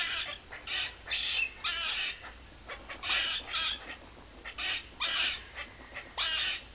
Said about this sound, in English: That is a squirrel. Now, these small or medium-sized rodents are found just about everywhere in the Americas, in Eurasia, Africa, and Australia.